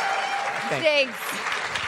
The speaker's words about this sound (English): I feel like not everybody clapped. This side didn't clap.